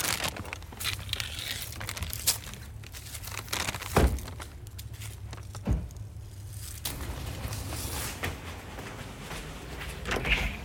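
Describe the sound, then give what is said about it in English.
The front door of a house is pushed open as two people burst through, then knocked shut, with a few sharp thumps and rattles spaced out over a steady low background rumble. No one speaks. “The pair burst through the front door and run to the back of the house, hoping to watch it pass over their home.”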